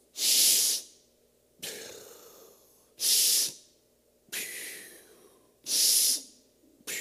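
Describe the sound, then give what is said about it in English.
A voice imitates the heavy, labored, wheezing breathing of a 10-year-old boy: loud hissing breaths alternate with rougher, wheezy ones in a steady, mechanical rhythm, repeated about five times with no talking. “And I'm not making fun, but this is the way he's breathing.”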